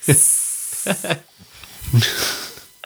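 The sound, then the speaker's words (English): A person imitates a snake with long, breathy hisses, broken up by short voiced sounds and a second drawn-out hiss near the end. “75 grand per hiss.”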